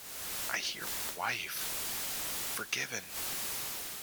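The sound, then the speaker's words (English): Steady hiss of radio static fills the whole stretch, with the faint, garbled voice of a man at the edge of a volcano crater breaking through in two short bursts, muffled and hard to make out beneath the noise. “He's so close to the volcano, his words are obscured and static.”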